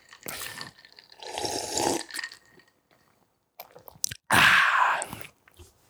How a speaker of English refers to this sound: Let me take a sip.